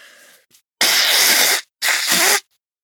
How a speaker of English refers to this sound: To be real, I actually engulfed a ton of pepper to reenact that sneeze, and now it's just made me kind of, nasally, so let me blow this out.